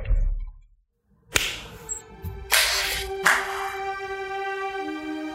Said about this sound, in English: Gotta clap. Do we have to clap? I think we gotta clap.